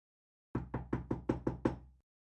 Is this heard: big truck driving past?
no